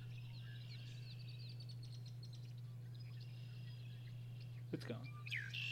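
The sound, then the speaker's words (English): A red-winged blackbird calls with thin, buzzy trills, ending in a sharper rising-and-falling call, heard faintly over a steady low electrical hum. “It's a red-winged blackbird.”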